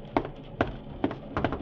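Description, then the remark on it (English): Five sharp knocks by the conductor on a train compartment door, evenly spaced at first and ending with a quick double rap, over a steady low rumble with no voices. “I'm in the next compartment to hers, and I heard the conductor knocking on a compartment door just now, and she doesn't seem to answer.”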